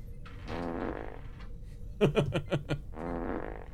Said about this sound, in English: You got the fart thing on there. Oh, I guess I do have a fart now. Yeah.